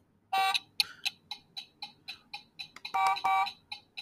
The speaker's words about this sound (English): Oh, you got them in there. We're gonna see what the buzzer says here, and if I can just turn it on.